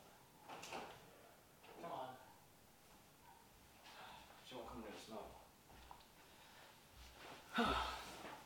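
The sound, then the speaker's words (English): A pet cat claws at a door in several irregular scratchy bursts, some short and some drawn out, not loud, with faint muffled voices in the background. “Clawing at the door. Oh, that was her?”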